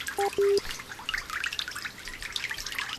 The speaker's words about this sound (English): Nobody ever seems to notice the water running in the background. I need to get some better water sound effects.